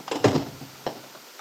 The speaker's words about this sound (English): I hope this door isn't locked. Oh, thank goodness.